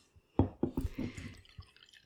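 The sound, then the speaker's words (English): Great Lakes Christmas Ale beer pours into a glass with a few quick glugging splashes, then a soft foamy fizz that fades over the next second or so. “So while he's pouring it, I've got the Great Lakes Christmas Ale fact sheet up.”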